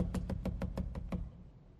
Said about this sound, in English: When you finally hear, you know somebody is at the door. That pounding is to say, yo, I'm here. I'm here. Open the door, please.